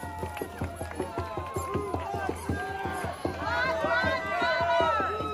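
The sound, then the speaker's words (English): A large crowd cheers, shouts and chants "Black Lives Matter" at a protest as an American flag is set on fire, many overlapping voices blending into a dense roar that swells louder and more excited toward the end. “You can see someone walking over, sets the fire. The crowd cheers.”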